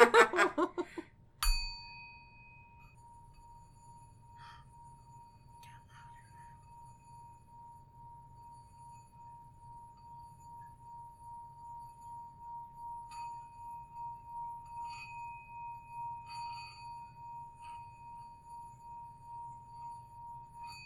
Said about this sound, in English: Do you guys want to hear a singing bowl? I wonder how well it'll go in there.